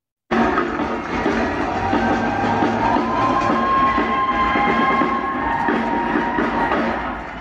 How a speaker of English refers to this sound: And let's do it all together, together as ever as one, tonight's roar of appreciation in New York City. Listen to the love.